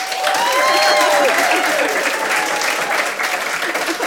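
Steady audience applause, a dense wash of many hands clapping at a loud, even level for about four seconds, with faint overlapping voices and whistle-like tones mixed into the crowd noise, as the audience votes by applause at a debate for leaving the house.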